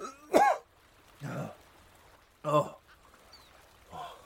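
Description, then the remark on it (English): Four harsh, raspy bursts of a man's violent coughing and throat clearing come about a second apart, with the first and third the loudest and brief quiet gaps between them. “He tried to speak, but was interrupted by a fit of violent coughing that caused his whole body to jerk and shudder.”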